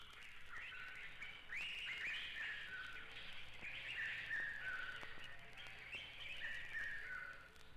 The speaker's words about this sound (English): The birds.